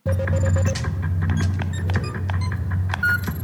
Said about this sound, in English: let you two music men, who have probably seen that movie at least 2 or 3 times, who have probably heard that iconic piece of music probably a dozen times, and have probably even played it on your respective instruments, I give you the door beeps.